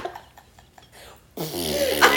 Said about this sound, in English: Oh, you're farting just like my late mother. Oh, it's like grandma. Smelled just like onions too.